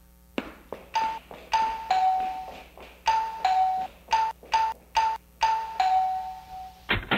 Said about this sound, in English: What happened to your doorbell? I don't know. I must have had the microphone too close to it. I'll move it back.